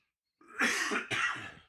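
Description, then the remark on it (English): Two harsh bursts of coughing mixed with throat clearing, a short rasping sequence with a brief gap between the bursts and no talking. “has the long cough”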